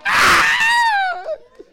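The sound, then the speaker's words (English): A man lets out a loud, sustained scream of pain, strained and harsh, that tapers off into a falling wail after about a second. “When I caused the trouble on myself, I was screaming.”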